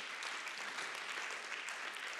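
A crowd claps their hands to the Lord in the morning, a steady, dense, sustained wash of overlapping handclaps, fairly loud and even throughout, with no voices standing out.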